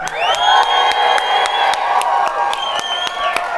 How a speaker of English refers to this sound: We are going to make some noise. If you got to whistle, yell, stand up, clap, scream, whatever you got to do, the neighbors got to know that God loves them too, all right? Here we go. 3, 2, 1.